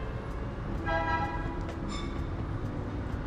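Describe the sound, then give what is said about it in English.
A coffee truck's horn toots twice outside, a longer blast followed by a shorter one, fairly loud over a steady low rumble of traffic. “That's the truck, the coffee truck.”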